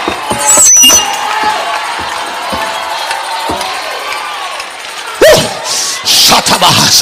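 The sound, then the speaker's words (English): A church audience shouts and cheers in praise, a Holy Ghost shout, in a steady, dense roar of mixed voices, with louder surges at the start and again in the final two seconds. “Tell somebody, after all I've been through, I'm still shouting, it must be the Holy Ghost.”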